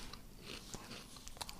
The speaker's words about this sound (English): You going to be chewing all night?